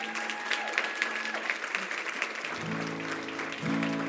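A standing audience claps for a woman present among them, a dense wash of many hands lasting about four seconds. Partway through, low sustained musical tones begin underneath the applause.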